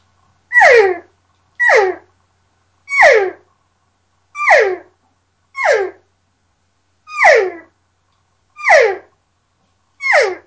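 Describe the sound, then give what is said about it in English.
Eight cow calls blown on a latex reed game call, made by adding a little more tongue pressure against the latex, each a short, nasal mew that slides downward in pitch, repeated at a steady pace with brief silences between and no talking. “Okay, and again, just like on the open reed call, that's the start of the call, and then just by adding a little more tongue pressure to it, you're going to get into that cow call sound.”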